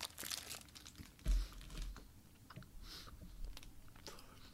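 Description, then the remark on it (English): Close-up mouth noises of someone biting into and chewing a Tasty Cake Butterscotch Crimpet, a sponge cake with thick butterscotch icing, with moist smacking and faint crinkly rustles repeating irregularly near the microphone, no talking. “Okay, I'm biting down now.”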